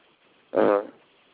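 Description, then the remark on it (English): A woman sneezes once, quick, sharp and slightly buzzy, lasting under half a second before trailing off into quiet. “She's always just sneezed.”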